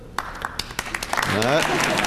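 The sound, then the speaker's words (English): Scattered audience applause during the introduction of the University Confucius Institute's Board of Directors: a handful of sharp, uneven claps ring out, then a voice starts talking over the last of the clapping. “Now I'm going to introduce the members of the Board of Directors, and you could hold your applause until all of them have been introduced.”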